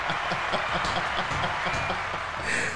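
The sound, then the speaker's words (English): Audience applause welcoming the author of the songs played in the show's background: a steady, dense wash of many hands clapping at once, loud and continuous for the whole few seconds with no clear voices on top. “If you didn't think that was coming, absolutely, absolutely the applause.”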